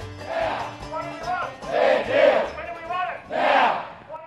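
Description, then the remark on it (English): A large crowd at a United Firefighters Union rally chants in unison in the streets of Melbourne on Tuesday 8 December, three loud rhythmic surges of massed voices rising and falling, with steady low rumble underneath and no single speaker standing out. “The streets of Melbourne were ringing with union solidarity on Tuesday the 8th of December, with the United Firefighters Union rallying to denounce the Andrews Labor government for dragging its feet on their EBA for a phenomenal 950 days.”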